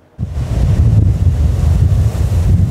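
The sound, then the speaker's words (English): Loud, steady roar of storm wind buffeting the microphone with heavy surf churning underneath, a dense low rumble that barely lets up, with no one speaking. A Friday storm during a king tide pounds the seawall at Ambleside Park in West Vancouver. “Friday's storm packed a punch, pummeling Ambleside Park and flooding parts of West Vancouver.”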